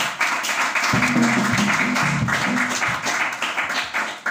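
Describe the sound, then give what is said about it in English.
A crowd claps steadily for several seconds, a dense wash of many hands, with a low sustained tone briefly sounding underneath partway through, applauding a woman becoming a pastor who is invited to come and preach. “Can you clap hand”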